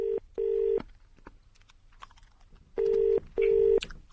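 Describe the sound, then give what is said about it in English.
A telephone ringing tone heard down the line on a call in 2007, two loud double-ring bursts separated by a pause of quiet line noise, with no one picking up and no answering machine. “How can a phone ring for that long?”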